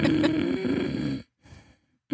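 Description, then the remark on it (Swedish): A voice imitates a newborn's noisy, raspy breathing: one long wheezy breath, then a pause and a shorter, quieter one, unaccompanied by talk. “Och sen har vi den här andningen som är jättesvår att göra.”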